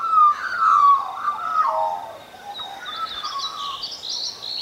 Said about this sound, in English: I love the sounds that birds make when they talk to each other.